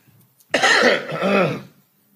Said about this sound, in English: Make sure I clear my throat